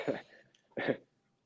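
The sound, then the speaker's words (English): Two sharp coughs, separated by a brief pause with a faint breath between them, fairly loud, with no talking over them. “But yeah, I'm gonna try to be on here, man, and not die coughing.”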